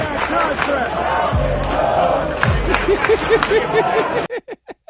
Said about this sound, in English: Yes, the crowd goes wild there.